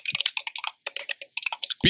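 Chunky computer keyboard typing: rapid, clattery keystrokes in quick bursts with short pauses, fairly loud, cut off at the end by a brief vocal sound.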